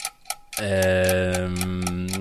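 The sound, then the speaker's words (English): A 30-second countdown timer for a quiz question ticks in a quick, steady rhythm, and partway through a loud, sustained droning tone swells in underneath and holds while the ticking continues. “Clock's ticking.”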